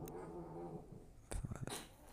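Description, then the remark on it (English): Two cats wrestling, not fighting: a drawn-out, tonal yowl is followed by a brief burst of scuffling thumps and bumps, moderately loud, with no one talking. “I'm being a bit distracted because my two cats, they're not fighting, but they're wrestling, so to say.”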